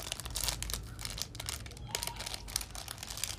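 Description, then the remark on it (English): Steady crinkling and crackling of plastic wrapping as a Hello Kitty gummy snack package is pulled open, a dense, continuous rustle with brief sharper bursts and no voices. “I can do it. I can open it.”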